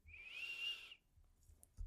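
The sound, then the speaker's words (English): A person whistles one sustained, steady note, imitating a whistle call. It lasts about a second and is fairly loud, then fades into quiet with faint low rumbling and a soft thump at the end. “And I'm like, damn, is somebody whistling for us?”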